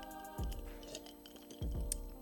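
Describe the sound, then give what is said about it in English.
Ice cubes clink and rattle against a glass of water in two short bursts, bright little taps over a low sloshing swirl, fairly quiet with no one speaking. “That is a mix I like to call water and ice.”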